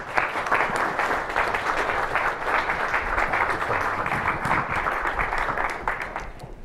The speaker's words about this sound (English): With your applause, please welcome Minister Soini.